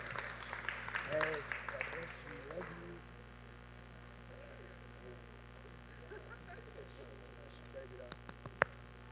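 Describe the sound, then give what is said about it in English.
An audience bursts into hand clapping for Jesus for the first few seconds, then the applause fades into murmuring voices over a steady electrical hum, with a couple of sharp isolated claps near the end. “Give one more big hand clap for Jesus.”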